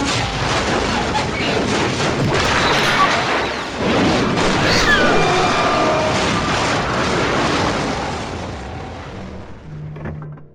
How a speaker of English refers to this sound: Oh God, is that a missile? Oh God, the plane's going down. The plane's going down.